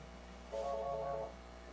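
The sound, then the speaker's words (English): A short electronic phone notification tone chimes once, lasting under a second, with stacked bright harmonic tones over a quiet background hum. “I need to put my phone in Do Not Disturb.”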